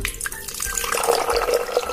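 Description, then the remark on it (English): Cold water pours steadily into a glass, a continuous splashing stream that lasts about two seconds with no one speaking. “Glass B with cold water.”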